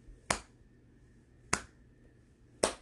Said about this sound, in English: Big Oni clapped his hands, slow and resounding.